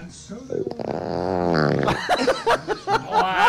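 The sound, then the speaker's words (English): A long, bubbling fart rumbles with a wobbling, sputtering pitch for over a second, then gives way to short choppy bursts of voices. “Wow, there was a cauldron bubbling in there.”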